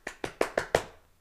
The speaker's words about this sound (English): Hey, yo, what's that? What's that? Meat slapping noise. That's clapping my ass cheeks.